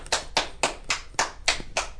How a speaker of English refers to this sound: Wow, that was an awkward clap.